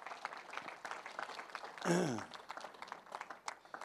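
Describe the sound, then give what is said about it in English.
A crowd claps steadily throughout, a dense patter of many hands, with a brief loud cheer or whoop rising around the middle before the applause carries on. “Give him a clap.”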